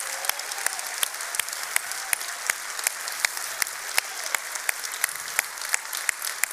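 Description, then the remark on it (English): A large crowd applauds and cheers steadily and enthusiastically for standing veterans and serving military members, a dense, continuous wash of clapping with sharper individual claps popping out, sustained at even loudness throughout. “I hope you hear from everybody cheering that we see you, we love you, and we are grateful.”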